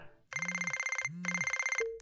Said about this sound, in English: Saturday afternoon, my phone rings. Unknown number.